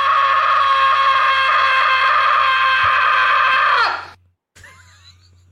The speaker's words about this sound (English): Oh, by the way, you want to hear a good yell? I got a great one.